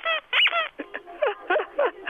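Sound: squeaky toy being squeezed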